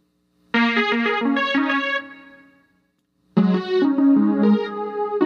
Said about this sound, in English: Then the synth tones.